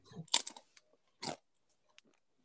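A crisp ghost pepper chip, kept in the fridge all day, is bitten with a sharp crunch, then crunched again about a second later, followed by a few faint chewing crackles. No talking.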